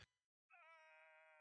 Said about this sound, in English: Actually, let me test something real quick. I'm going to yell with the switch on. Right. Here we go.